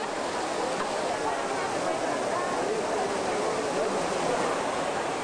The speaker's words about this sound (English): It's the melding of engineering. It's got like 24 different water spouts creating this huge gusher of water, and yet it also is completely decorative.